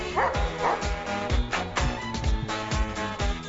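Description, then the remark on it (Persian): A dog barks repeatedly in a quick, fairly regular series of sharp, loud woofs over a steady tonal background. “نه سگ بغلتون نباشه بخوابیم.”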